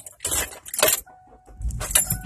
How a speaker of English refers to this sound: Locate my keys. Usually always in my right pocket.